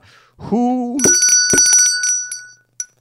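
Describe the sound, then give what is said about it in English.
A brief voiced sound, then a bright, metallic bell rung to buzz in and answer a trivia question, in several quick dings, each leaving a high shimmering ring, with a last short ding just before the end. “And you have to buzz in. Don't just answer. You got to buzz in.”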